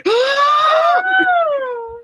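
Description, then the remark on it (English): A person loudly imitates a shriek: a sustained, high-pitched vocal wail lasting about two seconds, rising at first and then gliding slowly downward. “Yeah, everybody that failed let out a shriek.”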